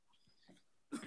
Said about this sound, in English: Well, I'd say interesting cough, Fauci. I hope you didn't get any COVID.